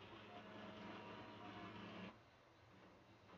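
A printer whirs and hums mechanically for about two seconds, then cuts off abruptly as it powers down, leaving only quieter background noise. No one speaks.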